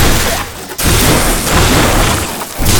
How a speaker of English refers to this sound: Whoa! What? They've short-circuited our drone!